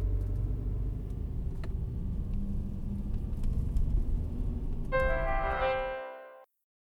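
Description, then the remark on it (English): A car engine rumbles steadily and loud, then a brief harmonic whine rises near the end as it pulls away, before the sound cuts off abruptly. “Get in the car while it's still cooperating.”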